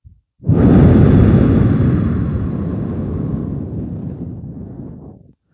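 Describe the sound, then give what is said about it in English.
A single long, deep breath is exhaled out through the mouth during a guided breathing meditation, rushing out as a loud, airy whoosh that starts abruptly and slowly tapers over about five seconds before cutting off. No one speaks. “Take another deep, deep three breaths into the nose. Pause at the top, into your diaphragm, into your belly, exhaling a little bit longer out through the mouth.”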